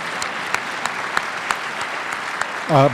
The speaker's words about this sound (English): You can clap for that, I would.